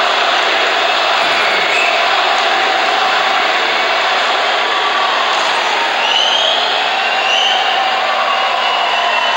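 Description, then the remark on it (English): A large arena crowd roars and cheers after Bobby Ryan's hockey goal makes it 4-2, a dense, loud, unbroken wall of noise that holds steady for the whole stretch with faint whistles rising through it. “And the crowd is loving it.”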